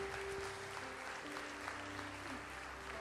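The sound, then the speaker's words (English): An audience applauding the ministry together, a dense, steady wash of many hands clapping at even loudness for the whole stretch, with a faint sustained tone humming underneath and no talking. “Yeah, give the ministry a hand clap.”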